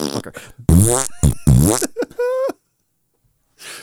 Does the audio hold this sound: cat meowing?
no